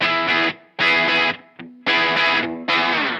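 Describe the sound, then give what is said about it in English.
Loud, distorted electric guitar played on the bridge pickup through an effects pedal plays four sustained chord bursts with a short single note between them, a bright, heavily effected tone with no talking. “You want to hear the most bridge-tastic? Maybe I should put in some of this to just freak Ed's ears out a little more.”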